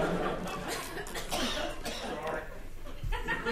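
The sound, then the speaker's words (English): A few short, dry coughs from an audience member coughing uncomfortably after a joke at a live comedy recording, with faint murmuring and a soft chuckle or two from the audience in the background. “You know, I think the greatest reaction a comedian can hope for when recording a live podcast is to have someone cough uncomfortably after the first shitty, unsuccessful, improvised dick joke.”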